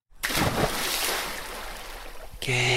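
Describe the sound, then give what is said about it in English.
A loud, rushing water-splash sound effect fills a couple of seconds, a broad hissing wash that slowly fades before a steady tone cuts in at the end. “Andrew's going to pick out a sound of something splashing.”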